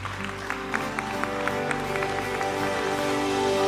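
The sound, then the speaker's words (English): An audience at a church service claps together after a prayer, giving the Lord a hand clap in a steady, sustained burst of applause, with a warm, held musical tone underneath and a few sharper claps standing out. “One, give the Lord a hand clap.”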